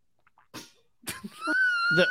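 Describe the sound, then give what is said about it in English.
A swallowing noise by Natalie Portman in a recorded interview with Bobbie Wygant of NBC Dallas: two short, wet gulping bursts, then a brief, higher voiced tone, like a sigh or exhale, that rises in loudness at the end. “Nothing's worse than the swallow noise.”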